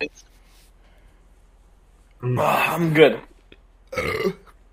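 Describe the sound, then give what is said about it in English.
Two loud burps: a long, rumbling belch lasting about a second, followed after a short pause by a briefer, gravelly one, with near silence around them. “went to burp and he just shit everywhere.”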